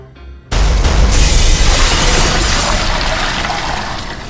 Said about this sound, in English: But from the shattered, translucent tank I was tumbling out of, the gallons of limbo elixir splashing to the floor